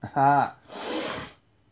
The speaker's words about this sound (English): When I cough, my nose starts running, man, and I sniffle, and you're going to hear that, too.